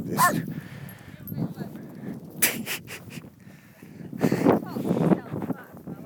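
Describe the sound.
Dogs, two large Dalmatians and a Labrador, bark in several sharp, scattered bursts, with softer whining between them, fairly loud against a busy outdoor background with muffled voices.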